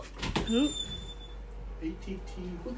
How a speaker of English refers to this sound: Someone's knocking on your door. Come in.